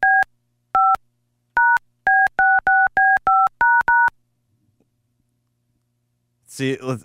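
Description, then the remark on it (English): A quick run of telephone keypad dial tones on new phone lines, about eleven crisp beeps in an uneven dialing rhythm, loud, followed by a pause and then a burst of someone starting to talk. “God, I hope there's nobody out there that knows how to do dial tones.”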